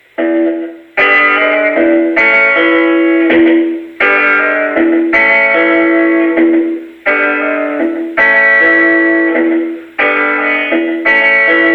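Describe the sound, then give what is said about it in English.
A guitar, probably electric, plays a loud, steady rhythmic chord pattern moving between E major and A major, barred across strings 4, 3 and 2 at the second fret, played with pick and fingers, bass strings muted with the heel of the right hand for a percussive sound, with regular bursts of strummed chords and short gaps between phrases, no voices. “That so it's kind of like it's an E major going to an A major chord.”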